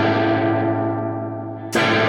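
A sustained, heavily effected electric guitar tone played through a pedal with its two controls all the way down and a high reverb level, with a thick, washy reverb tail that swells and decays, then a sudden brighter burst near the end. No talking.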